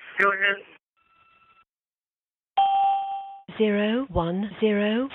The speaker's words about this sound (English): I'm back in, that's the bell in the car.